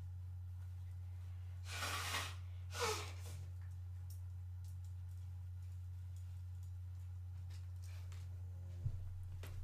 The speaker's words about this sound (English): Did you guys just hear me blow my nose?